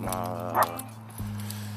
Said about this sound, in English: Y'all heard the dogs barking